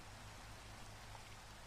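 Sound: rain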